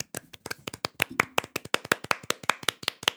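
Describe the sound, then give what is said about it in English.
A brief burst of hand clapping, a short clap for Johnny Knoxville and the crew of Jackass Forever: a quick run of sharp, crisp claps in a fast uneven rhythm, fairly loud with no talking over them. “Let's clap. Short clap though.”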